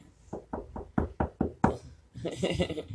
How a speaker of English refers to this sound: You know, you don't just ram through somebody's front door. You got to knock first.